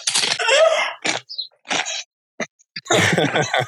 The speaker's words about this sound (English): Yeah, that's what I'm eating. ASMR. You can hear it. They could be the Grimbo ones. You can hear it in the chew.